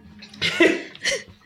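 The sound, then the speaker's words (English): Someone drinks or gargles water, with two short bubbly, throaty gurgling bursts separated by a brief pause, fairly loud and with no talking. “This podcast is sponsored in part by water. Ooh, yeah. It's good. Have some.”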